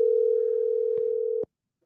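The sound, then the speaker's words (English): A telephone ringing tone as a phone call is placed to Roker's wife, Claire: one steady, mid-pitched electronic tone holds for about a second and a half, with a soft click partway through, then cuts off abruptly at a sharper click. “Calling Roker's wife, Claire, who's probably in the house.”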